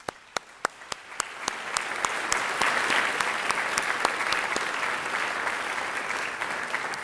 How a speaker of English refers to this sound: Thank you for everything you've done to grow this institution. Please join me in giving you all a round of applause for some great work.